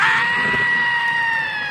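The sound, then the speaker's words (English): A person lets out one long, shrill scream, held at a steady high pitch for under two seconds, loud with no talking around it. “You scream like a girl. Do it like this.”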